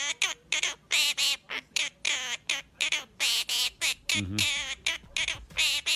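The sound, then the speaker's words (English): A little baby bird squawks in rapid, repeated bursts, harsh and loud, its chopped rhythmic calls oddly resembling the phrase "baby shark" sung over and over. “It's just a bird making a bird noise, but it's going to sound very, very familiar to you when you hear it.”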